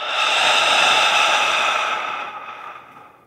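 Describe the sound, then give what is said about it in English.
A single long, forceful lion's breath exhale pushed out through an open mouth during a guided breathing exercise, a breathy rushing hiss that holds steady and then tapers off as the air runs out. Alone, with no talking. “Lion's breath out.”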